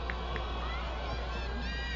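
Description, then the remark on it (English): A large stadium crowd at a BYU versus St. Mary's soccer match roars steadily as a player takes the ball into the final third, a dense wash of many voices with scattered shouts rising out of the din, without any clear individual speech. “Crowd responds as Coulihan takes it into the final third.”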